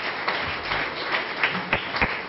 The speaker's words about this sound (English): Give them a clap, offering.